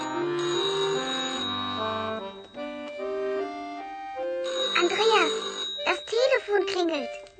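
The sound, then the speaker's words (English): Soft melodic music plays at home during a meal, then a telephone rings twice in warbling bursts that rise over the music, fairly loud. “He's listening to music and has just sat down to a meal when the telephone rings.”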